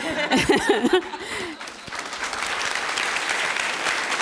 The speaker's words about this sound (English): Please give a round of applause to Dr. Jemison.